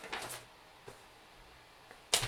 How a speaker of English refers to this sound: Write it down. That is paper you can hear. Write it down.